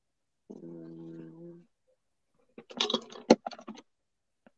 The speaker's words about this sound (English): Sounds like somebody's reaching for some cards. I know when I hear cards, ladies and gentlemen. I can't shuffle those great big ones. I don't shuffle mine. I can't shuffle the little ones.